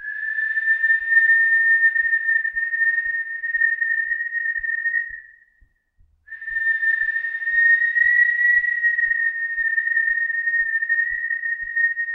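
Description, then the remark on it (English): People whistle strange harmonics together, recorded on a little recorder, in a long, steady, high tone with a faint upper harmonic, breaking off once in the middle before resuming; soft rhythmic clicks sound underneath, and nobody speaks. “So we just recorded like a bunch of strange whistles.”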